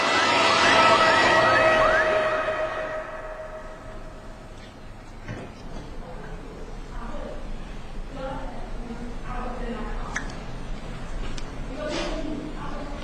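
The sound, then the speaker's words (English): An ambulance siren wails loudly with rising and falling tones for a few seconds as the ambulance rushes to a clinic in Owerri, then fades away, followed by a voice speaking over faint background noise. “Meanwhile, the ambulance rushed to St. Eunice's Clinic in Owerri.”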